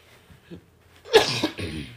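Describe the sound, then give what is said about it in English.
After a second of near silence, a person coughs: a loud, harsh burst followed quickly by a second, slightly softer cough. “I'm trying my best to get through this whole thing without coughing.”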